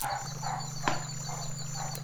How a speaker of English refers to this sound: A high-pitched kind of bark, which means we're going to have fun, I like you.